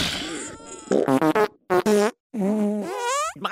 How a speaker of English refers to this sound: Look, coconut milk makes me hyper, soy milk causes me to have headaches, and cow's milk gives me the toots. Here, I'll prove it to you.